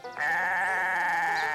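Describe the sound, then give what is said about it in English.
A single drawn-out goat bleat, loud, with a wavering, nasal quality that holds steady for over a second after a brief quiet start, with no talking. “bleated the goat.”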